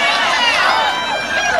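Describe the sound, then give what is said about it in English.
A large crowd boos steadily, a loud, continuous wash of many voices that holds without a break for over a second, booing at being told that every Republican voted against reform measures. “Don't you boo. Booing doesn't do nothing.”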